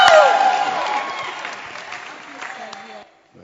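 An audience bursts into dense, sustained clapping mixed with cheers and shouts, loudest at the start and gradually thinning before cutting off abruptly after about three seconds.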